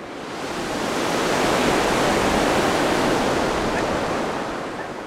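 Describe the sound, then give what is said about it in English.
Ocean waves crash against the shore of a beach at Friendship Park on the border, in a steady, broad roar that swells and then slowly recedes, a single long wash of surf with no voices. “So for about 15 minutes or so, the only sound on that beach was the waves crashing against the shore.”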